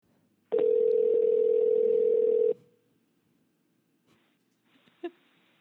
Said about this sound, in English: Further ado, let's call him. Let's give him a ring.